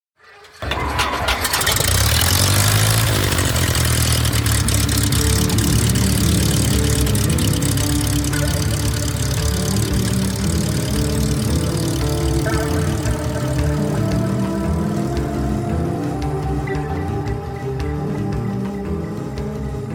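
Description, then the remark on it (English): A propeller airplane engine coughs to life after a brief silence, then settles into a steady, loud, rumbling idle with a throbbing low drone that continues without pause. “Hop aboard my flying carpet, buckle your seatbelts, and prepare for takeoff on today's adventure. Flight number 18. Pilgrimage to Oshkosh. Clear prop.”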